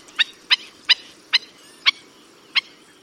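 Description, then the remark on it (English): A black-necked stilt gives six sharp, loud yipping calls, one after another with slightly widening gaps, each a bright, piercing bark standing out over a faint low background rumble. “They leap into the air and call with an intensity and volume all out of proportion to their delicate appearance.”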